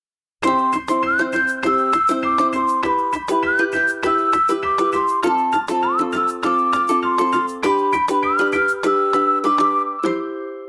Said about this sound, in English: What a wonderful selection of theme tunes, particularly those played on your tin whistle.